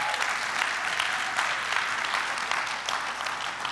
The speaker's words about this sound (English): Hey, I told the first gathering that Blessed Temple, you are giving my hands a workout. So thank you. Thank you for giving my clapping hands a workout.